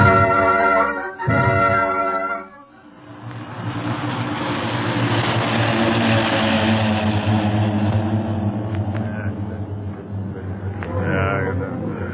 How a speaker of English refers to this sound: Okay, but don't move. No one must move until those planes are out of sight.